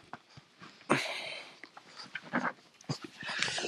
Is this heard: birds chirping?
no